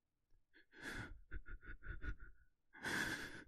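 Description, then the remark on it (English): A man who has collapsed gasps for air: one loud, heaving inhale, a quick run of short ragged panting breaths, then another long, desperate gasp. “He collapsed, desperately gasping for air, now that his lungs were once again free to breathe naturally.”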